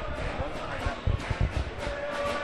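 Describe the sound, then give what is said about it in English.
A large stadium crowd of football fans chants and sings continuously, a dense roar of many voices, with a few dull thumps standing out briefly in the middle. “Gated fans in fine voice already.”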